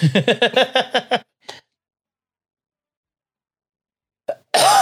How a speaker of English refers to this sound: I got the cough again. I got the flu rona.